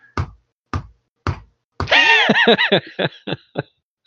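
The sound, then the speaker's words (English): Three sharp, evenly spaced taps give way to a burst of rubbery squeaks with wavering pitch from a little rubber ball squeezed as a stress ball, then a few shorter squeaks, fairly loud. “you can hear the squeaking of the little rubber ball as if like Mason's using it as a stress ball”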